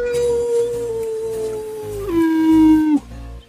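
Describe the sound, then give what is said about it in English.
A person imitates a long, wavering howl, one sustained tone that slowly slides downward then drops in pitch before cutting off, loud, with faint low rumbling underneath. “Howling Diablo. Howling Diablo.”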